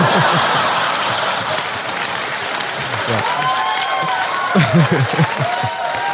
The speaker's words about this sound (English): That gets a really long applause. Like, that's a funny joke. Yeah, but that's like 10 seconds that they're cheering for that joke.